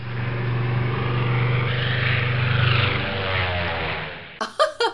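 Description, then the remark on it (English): An early two-propeller airplane engine roars with a steady, buzzing drone that swells slightly as the plane takes off, then cuts off abruptly as a voice begins speaking; the first plane taking off in North Carolina, USA, on December 17, 1903. “The first plane took off in North Carolina, America at 10:35 a.m. on December 17, 1903.”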